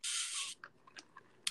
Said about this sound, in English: All right. I'm going to take a quick sip from my Purdue thermos that I got today.